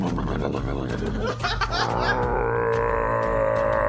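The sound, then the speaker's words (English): A loud, deep rumbling fart sound, made by Hulk Hogan's voice imitating Andre's fart, starting with a sputtering growl and stretching into a long, sustained low drone. “The sound of Andre taking a fart.”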